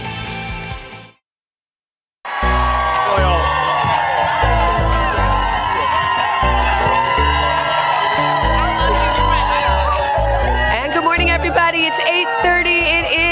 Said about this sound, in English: Tuesday morning, 8th of November, 2022. What a beautiful crowd. Oh my gosh, I love it. Got a Bear Down sign over there. Hi, how are you? Gotta give Arizona a little love right there. Yay.